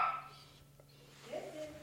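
A dog gives a couple of short, high whimpering yelps with a brief quiet gap between them, fairly soft, with no talking over it.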